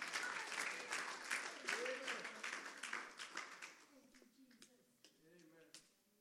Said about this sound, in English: Oh, clap your hands and magnify the Lord today. Hallelujah.